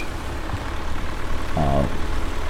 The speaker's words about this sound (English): Also beeping the horn as I pull in.